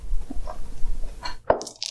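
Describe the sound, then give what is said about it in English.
Dice rattle and tumble across a hard surface, hopping out of a dice arena, then a sharp clack lands, followed by a quick run of bright, high clinks as they knock into about three other dice. “That hit like 3 other dice on the... It.”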